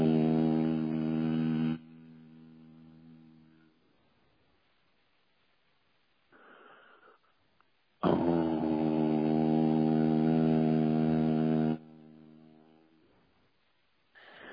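A low, steady voiced drone of an Om chant sounds twice: a short held tone first, then a longer, louder one after a pause with a faint breath, each ending abruptly.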